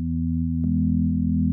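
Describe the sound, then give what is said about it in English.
A smooth sine-wave synth pad, the default pad of the Keyscape keyboard plugin, holds low, steady tones at a constant level, shifting softly to a new chord about halfway through, with no voices. “There's a plugin called Keyscape that I use a lot, and the default pad is just a sine wave pad that I just think sounds really good when you start.”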